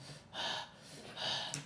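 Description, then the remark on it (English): Two loud, ragged breaths, each a harsh rushing exhale about half a second long, separated by a brief pause, with no talking: heavy breathing after a fight, from someone on top of a slain werewolf. “Alros is breathing heavily while on top of this werewolf”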